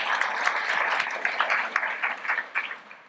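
An audience claps steadily for about three seconds, a dense wash of many overlapping hand claps with sharp individual pops, slowly thinning out toward the end.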